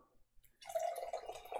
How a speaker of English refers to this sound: But I'm about to pour. They came in plastic bottles, so let's be honest. Let's be honest. This is not top shelf. I'm going to combine Cab Sav with store brand seltzer water. Here we go.